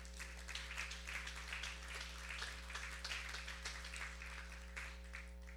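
An audience claps their hands in thanks to the Lord in a steady, dense patter that continues throughout, fairly faint, with a low constant hum underneath and no one speaking.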